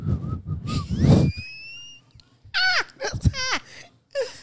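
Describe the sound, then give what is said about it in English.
Someone whistles a short, bright melodic phrase from a song, mixed with sliding vocal humming and wailing tones as the tune is imitated in a few quick bursts. “And they be whistling like.”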